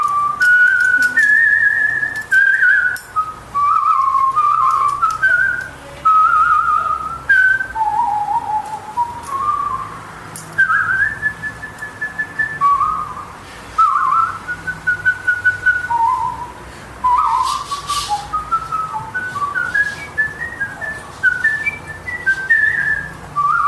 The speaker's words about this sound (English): … whistling from the Magic Flute is beautiful.